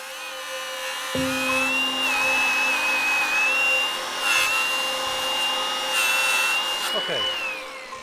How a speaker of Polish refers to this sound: Wszyscy przyglądamy się, jak tarcza szlifierki przecina elementy mocujące, rozsypując wokoło iskry.